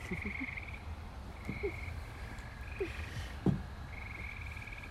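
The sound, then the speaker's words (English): Frogs croak continuously in a nighttime chorus, with repeated pulsing trills and a few deeper croaks rising over a steady outdoor background. No one speaks. “it might have been the frog again.”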